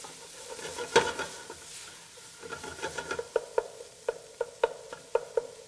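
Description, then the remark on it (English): Sausage sizzles steadily in a hot pan on medium-high heat while a utensil scrapes and breaks it up, giving a series of sharp, rhythmic taps and clicks over the continuous fry, with no voices. “So I've been cooking this on medium-high heat to develop the color the whole time. Breaking up the sausage as I go.”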